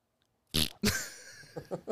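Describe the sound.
A voice makes a buzzy mouth fart imitation, two loud raspy blasts close together, trailing off into a few softer sputters. Nobody speaks any words.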